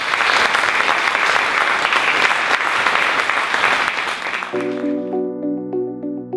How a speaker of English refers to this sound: Thank you. A round of applause.